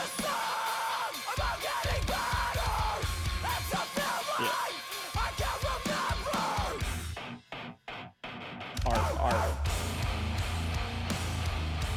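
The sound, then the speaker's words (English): A loud, heavy hardcore breakdown with distorted guitars, pounding drums and harsh screamed vocals, briefly cutting out in choppy stop-start hits before crashing back in at full volume. “And then it's just a big breakdown. Yeah. And then just he just screams nice for a while.”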